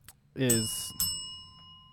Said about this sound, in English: Well, why'd you hit the bell multiple times?